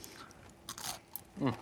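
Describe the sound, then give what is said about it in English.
A crisp bite into a fried onion ring: a quick burst of brittle crunching and crackling, followed by a short hummed vocal sound. “that's like a textbook onion ring. A restaurant would be known for an onion ring like that. Really? Great crunch, not oily.”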